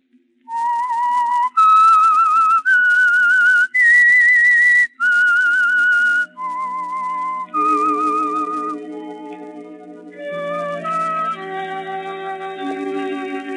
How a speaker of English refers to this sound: That whistle is your signal for the Signal Oil Program, The Whistler.